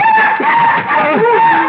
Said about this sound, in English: Just another night bird, Everts. Don't let it bother you.